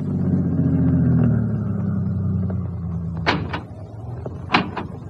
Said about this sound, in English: two men drove up and got out of their car.